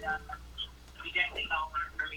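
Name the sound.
telephone call connecting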